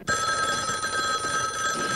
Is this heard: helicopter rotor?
no